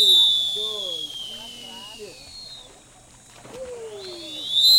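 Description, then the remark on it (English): A lifeguard whistle at a pool, signalling everyone to get out of the water, gives a long, shrill, steady blast, then a second loud, piercing blast near the end, with people talking underneath and in between. “And it just sounded more creative than I imagined whistleblowing in the lifeguarding industry to be.”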